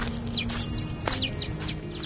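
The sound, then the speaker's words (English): Birds chirping outdoors, a quick series of short, high tweets repeating irregularly over a steady background hiss, fairly quiet, with no one talking. “we'd also take requests for sounds people wanted to hear from the other side of the prison wall, or sounds their loved ones wanted to send inside for them to hear, like baby laughter or bird chirping.”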